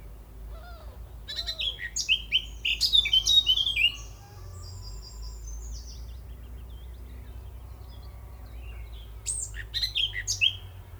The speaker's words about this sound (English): So there were some willow warblers, but there was also a slightly louder voice in there. Small spurts of rapid notes on two, three occasions in that recording. And that was the next bird we're going to talk about, which is the blackcap.